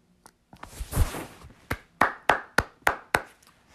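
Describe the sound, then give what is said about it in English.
A brief burst of applause swells and fades, then gives way to six sharp, evenly spaced hand claps in a steady rhythm, with no talking. “Applause.”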